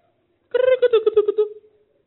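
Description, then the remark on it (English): A voice imitates a cuckoo-like bird call: one second of rapid, pulsing hooting notes at a steady pitch, fairly loud, with silence before and after. “Cuckoo. Cuckoo, cuckoo.”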